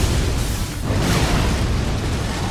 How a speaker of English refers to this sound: Throw a lightning bolt.